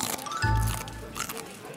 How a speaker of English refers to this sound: Sorry, it's just taking me a while to chew on this broccoli kale bitter bite.